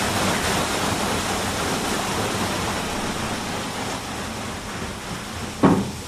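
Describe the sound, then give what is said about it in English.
A steady, powerful rush of water pours without pause through opened sluice gates as a large water wheel starts to turn, broad and noisy like a weir, with a brief knock near the end; no voices. “And the water wheel is starting to turn as the water comes in through the sluice gates with some force.”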